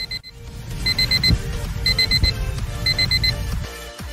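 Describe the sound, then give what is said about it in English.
An alarm clock rings with sharp, high-pitched electronic beeps in quick bursts of four, repeating several times over a steady low rumbling background. “Oh, where's the snooze button?”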